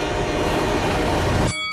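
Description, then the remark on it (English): A heavy 6,000-ton train rumbles past on railroad tracks, a loud, dense roar of wheels and rail noise that cuts off abruptly near the end, leaving a faint tonal hum. “I mean, in one corner we've got a 175-pound guy, and in the other, a 6,000-ton heavyweight train?”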